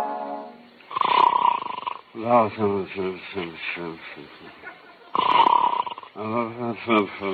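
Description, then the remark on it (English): Two loud, rasping snores from a man sleeping, each a long rattling inhale, with slurred, wordless sleep-mumbling in between and afterward. “Every night it's the same thing, snoring and mumbling.”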